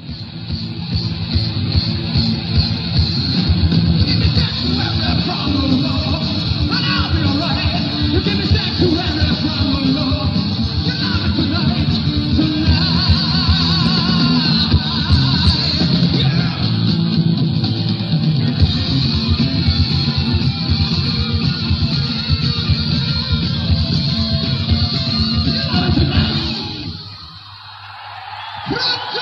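Loud, dense live rock music with a roaring crowd and scattered yells, the end of the first song a new singer performed on stage with a band in front of a crowd, sustained for nearly half a minute before a brief dip near the end as the noise swells again.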